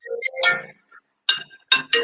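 A phone rings with a run of bright, chiming electronic tones in short bursts, broken by a brief pause before several quick repeated notes. No one speaks.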